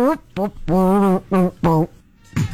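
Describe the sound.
Someone imitates a trombone with their voice for a sound-guessing game: about six buzzy, brassy hummed notes, a downward slide, short blasts and one long wavering tone, with brief pauses between.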